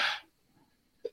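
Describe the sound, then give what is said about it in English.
A single sharp sneeze from a man bursts out loudly at the start, followed by quiet breathing and a brief short exhale or sniff near the end. “Bless you. Bless you, sir.”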